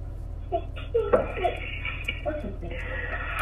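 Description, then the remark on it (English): A steady, low road rumble fills a moving car's cabin throughout, with a baby's squeals and babbling and a voice or two rising over the drone. “I'm in the car.”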